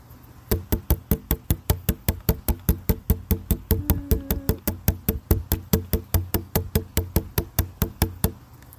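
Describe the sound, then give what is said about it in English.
Rapid, steady drumming on a plastic water bottle, dozens of sharp hollow knocks in an even rhythm with a low resonant thump under each hit, played alone without talk. “That was my drum. I hope you liked it. It was a water bottle.”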